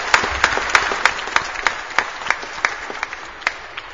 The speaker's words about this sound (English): We've had a great Easter week, and would you just give a round of applause to everybody who has helped out?